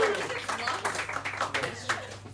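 A brief burst of audience applause for an audience member who wrote a question: many overlapping hand claps forming a dense, uneven patter at moderate volume, lasting a couple of seconds, with a low steady hum underneath.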